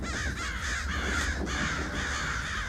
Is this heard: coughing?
no